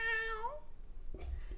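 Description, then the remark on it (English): A plastic toy cat gives a single drawn-out electronic meow that slides downward in pitch, followed by some soft, muffled handling bumps and rustling. No one speaks. “It's not a real cat. We're definitely not feeding this plastic cat.”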